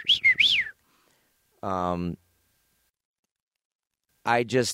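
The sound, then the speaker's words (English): A person vocally imitates a chattering robot: a warbling whistled trill, then a buzzy electronic-sounding tone, then rising squeaky sweeps, three short bursts separated by brief silences, fairly loud. “I thought it was so cool, a character that can just with the didn't say words, just beeps, whistles, noises, and just to be as memorable as a character as he was”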